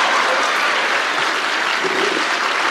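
Steady, sustained audience applause fills the space, a dense wash of many hands clapping at a constant loud level throughout, with no voices standing out.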